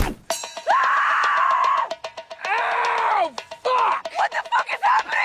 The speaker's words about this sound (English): reaction where she just starts screaming